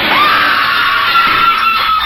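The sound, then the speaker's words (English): A woman's terrible shriek, loud and piercing, held for about two seconds as a harsh, strained cry as she hurls herself through a window and falls six stories to a cement courtyard, with no other voices around it. “With a terrible shriek, she hurled herself at the window and fell through.”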